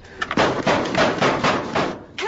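A series of heavy, crashing blows pound against a metal garage door as it is smashed, about five loud impacts landing in a steady rhythm, each one rattling and booming.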